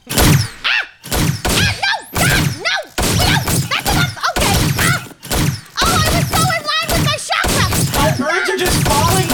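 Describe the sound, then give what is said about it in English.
A rapid, nearly continuous barrage of 50 loud gunshot sound effects, burst after burst with only brief gaps, some bursts carrying a voiced, throaty tone as if partly made by mouth. “50 gunshot noises.”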